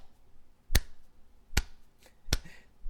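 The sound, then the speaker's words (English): Four sharp claps from a single person, evenly spaced in a slow steady rhythm, imitating a tennis crowd's rhythmic clapping on break points, with quiet background between beats. “Like, I want them to do that in the crowd. And mimic the okay. clap.”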